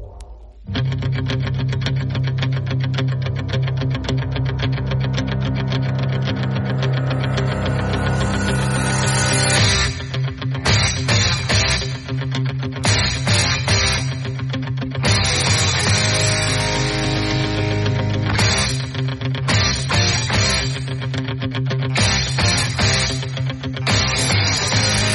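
Loud, dense rock music plays continuously on Tide 100.9 FM radio for the whole stretch, with a driving beat, thick guitar chords and steady bass. No one speaks over it.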